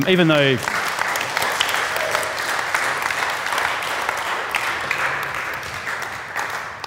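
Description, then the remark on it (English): Sustained applause from a large crowd for two people called forward, dense and steady for several seconds after a brief voice at the start, fading slightly toward the end. “Give them, these guys, a round of applause.”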